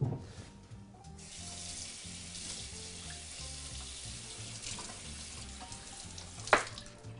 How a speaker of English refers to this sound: So I'm just going to take our salmon here. And I'm going to just rinse this excess salt off very quickly.